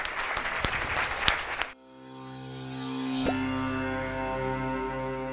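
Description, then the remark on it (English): A crowd claps loudly for a family for under two seconds, then the applause cuts off abruptly and sustained, layered musical tones take over and slowly swell. “Give this family a huge round of applause.”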